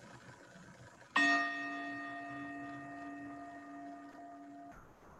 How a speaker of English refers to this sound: As we listen to the chime, let us remember our connection with each other and the world around us.